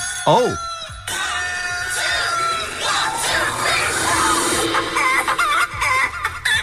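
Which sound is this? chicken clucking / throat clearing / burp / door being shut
chicken clucking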